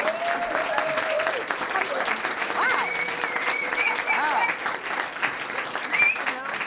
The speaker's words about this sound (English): Another hand clap. I mean, this is, I mean, I'm agreeing with it.